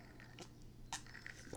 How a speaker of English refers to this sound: Excuse me. Sipping on that that coconut margarita. It's tasty.